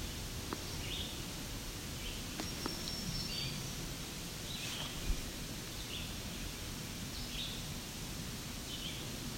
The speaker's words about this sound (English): There's a black-throated green warbler.